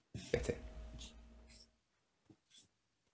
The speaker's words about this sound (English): You can hear the movement of the pencil.